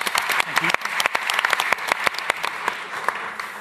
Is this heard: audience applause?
yes